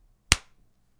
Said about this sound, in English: I didn't have a gong, so I clapped my hands.